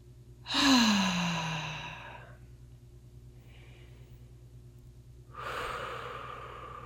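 Slow, deep breathing: a long exhale with a soft voiced sigh, a quiet pause of a few seconds, then another deep breath begins.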